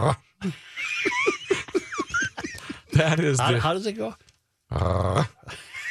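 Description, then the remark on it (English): A person does a throaty, snarling impression of a dog growling over its favourite toy when someone comes to grab it, in a couple of loud bursts, mixed with brief speech and laughter from others. “He's like a dog that has his favorite toy, and if you come close to grab it, he goes...”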